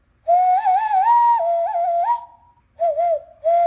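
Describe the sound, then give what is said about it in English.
A hollow, hooting hand whistle blown through cupped hands with the lips against the thumbs, fairly loud, holding a warbling tone in a long phrase, then a short pause and two briefer wavering notes, with no talking. “Another thing I learned out of boredom was the hand whistle. You know, you cup your hands together, put your lips against your thumbs.”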